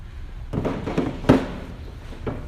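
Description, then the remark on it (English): Chairs being moved to build a little fence or corral for a demonstration: a handful of irregular wooden knocks and scraping clatters, with one sharper, louder bang partway through, over a low rumbling background and no talking. “I apologize, I'm going to steal some of your chairs.”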